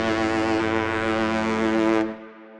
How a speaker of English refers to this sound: Hit the ship's whistle